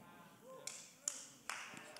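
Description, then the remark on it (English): Faint, half-hearted audience clapping: just a few scattered, sharp claps at irregular intervals, quiet and sparse, with a soft murmur of voices underneath. “If you're going to clap, clap. Don't give me a petty clap.”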